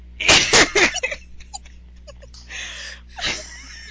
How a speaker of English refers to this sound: So bless you. We'll clear that up.